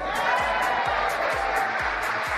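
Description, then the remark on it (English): A steady, dense wash of applause plays as an applause line. Many hands clap at once at a constant loudness, with a faint repeating pulse running underneath, suggesting a looped sound effect. No one speaks. “I said, I have an applause line.”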